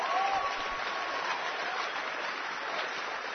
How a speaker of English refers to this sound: Keep on clapping. Give him praise. Thank you.